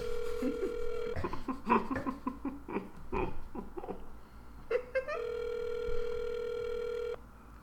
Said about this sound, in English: Let's just try giving her a really quick call. We're gonna live call Chelsea right now.